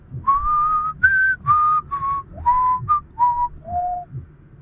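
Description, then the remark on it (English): A man whistles a familiar tune of about eight clear, sustained notes, rising and falling in pitch, with brief pauses between phrases; moderately loud, with faint low background rumble. “He started whistling the familiar tune.”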